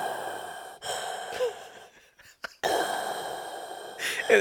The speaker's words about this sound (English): Man, I'm right, just breathing. I just picture you sitting in a movie theater.